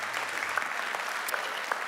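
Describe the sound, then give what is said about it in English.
An audience at a church service claps steadily after a prayer, in a dense, even wash of applause, with a few sharper individual claps standing out; no one is speaking. “It's okay to clap if you want to clap.”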